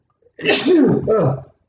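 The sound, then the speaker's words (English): A loud sneeze bursts out in two quick back-to-back blasts, breathy and forceful, then cuts off into quiet. “Hold on, I sneeze.”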